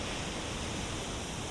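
A steady, continuous rush of ocean waves washing onto shore, a soft, even hiss of surf with no distinct breaks, heard alone without any talking.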